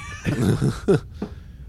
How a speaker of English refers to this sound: I've heard screams. Yeah, I've heard screams before. It sounds like a scream. So that sounds like what a gnome thinks a banshee sounds like. That was a scream.